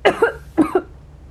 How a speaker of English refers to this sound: Yo, yo, I have caught the cough.